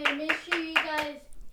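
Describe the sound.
Five evenly spaced claps ring out, a short, steady round of applause with a sustained voice running underneath them before it trails off.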